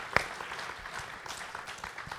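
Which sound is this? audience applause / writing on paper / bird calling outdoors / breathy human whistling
audience applause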